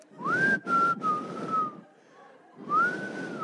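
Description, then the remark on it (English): A person whistles a short signal call for a meeting in two breathy, rising-then-steady phrases separated by a brief pause, moderately loud, with no talking. “Maybe the Black Panthers had a whistle?”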